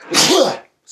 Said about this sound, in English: Bless you.